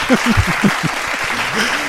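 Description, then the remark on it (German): A burst of recorded applause played in as a sound effect for a guest's entrance, a dense, steady crackle of clapping that holds for about two seconds while a voice talks over it. “Voll, ich tue dir so einen Applaus einspielen.”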